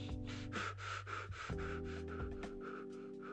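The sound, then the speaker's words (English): A person demonstrates the breathing of people who squeeze their abdomen as if wearing a corset, taking rapid, short, shallow breaths in and out in a quick steady rhythm of brief airy puffs with no talking. “Okay, or they breathe like, their breath is short, they breathe in short, they breathe out short.”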